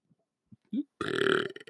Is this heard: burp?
yes